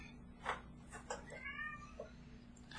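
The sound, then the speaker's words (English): A cat gives a few short, complaining meows as it walks away, one drawn out and wavering, fairly quiet over a low steady hum, with no one talking. “See, hear him talk shit when he walked away, like, meow.”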